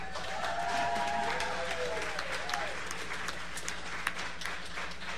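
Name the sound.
studio audience applause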